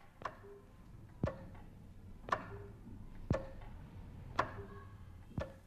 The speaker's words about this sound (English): The clock mechanically interrupts a continuous note, breaking it up into 6 pieces that usually represent the last seconds before the hour or the half hour.